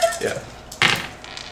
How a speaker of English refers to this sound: You rolled more dice than hit points.